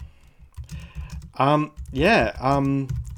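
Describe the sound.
Rapid clicking of keys on a computer keyboard, with a brief stretch of voiced murmuring or humming partway through before the light tapping continues.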